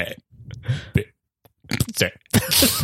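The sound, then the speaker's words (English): Someone burping the alphabet: a run of deep, croaky burps shaped like spoken letters, four or five loud bursts separated by short pauses, the last one longer and rougher. “No more burping the alphabet.”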